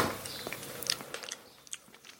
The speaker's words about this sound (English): if you're going to sit there slurping a 99